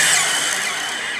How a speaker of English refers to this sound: front door of the house whips open and the brunette comes running out of it at you as you peel the car around and drive as fast as you can out to the driveway.